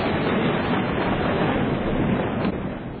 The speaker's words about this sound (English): I went through about 35 different thunder and lightning sound effects to try to find this one.